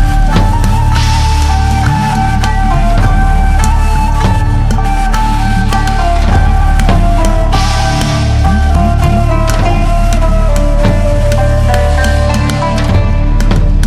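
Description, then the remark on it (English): Loud, full instrumental theme music from the film Before the Rain plays continuously, with sustained melodic tones layered over a steady pulse of rhythmic percussion hits, and no voices over it. “And as soon as the theme dropped and it sounded like this...”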